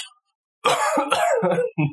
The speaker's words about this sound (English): Sorry, I got something back in my throat. I'm on the cough.